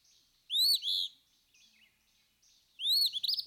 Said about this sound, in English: And Phoebe's clear, vivacious assurance of her veritable bodily presence among us again is welcomed by all ears.